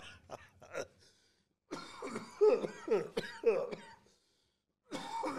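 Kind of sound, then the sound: human body sound, man coughing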